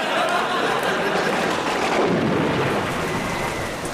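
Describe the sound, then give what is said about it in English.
Heavy rain pours down in a dense, steady hiss, with a deep rumble of thunder swelling through it around the middle. It stays loud throughout, with no voices. “Rain lashed at us like an angry sadist in a lash factory.”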